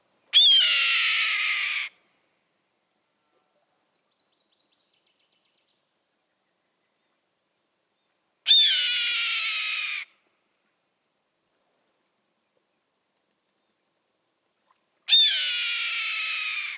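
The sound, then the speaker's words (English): A red-tailed hawk gives three loud, raspy, piercing screams, each about a second and a half long and slurring downward, separated by long silent gaps. The calls stand alone. “So let's listen to the sound of a red-tailed hawk.”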